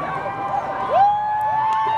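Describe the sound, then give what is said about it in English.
A convention crowd screams continuously, many high voices overlapping in a dense, steady roar, with one shrill shriek sliding upward and holding a long, sustained note. “It's just all screaming right now.”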